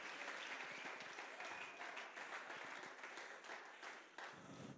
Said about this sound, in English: Oh, somebody clap your hands and give the Lord a shout of praise.